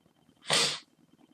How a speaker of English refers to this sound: Something fell. One of the cats is in here, so I think he's playing in the boxes behind me.